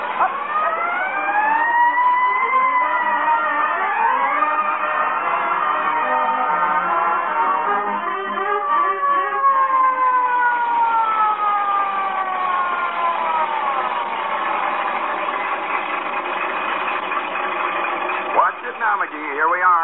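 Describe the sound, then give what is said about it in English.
A fire truck siren wails loudly as the truck rolls past the Elks Club, its pitch sweeping up and down in long continuous glides for the whole stretch, with a brief sharper swoop near the end. “Boy, when I rolled past the Elks Club with a siren going 70 and me going 30, those guys see what I'm here.”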